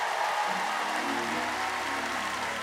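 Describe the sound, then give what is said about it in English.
An audience claps steadily for a few seconds, a dense, even wash of applause with no breaks, while faint low humming tones sit underneath. “If you believe that, give them a clap offering.”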